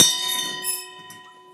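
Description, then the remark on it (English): A single gong-like strike, a sound effect in a told fairy tale following a shakshak clattering to the ground, rings out with a sharp attack, then a shimmering metallic hum of steady overtones slowly fades over a second and a half, with no voices. “The shakshak clattered to the ground, followed by a gong-like sound.”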